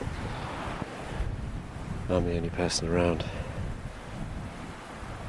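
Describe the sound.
Steady, gentle sea surf washes along the shore of Church Bay in a continuous soft hiss, with some wind blowing across the microphone. A man speaks briefly over it midway through.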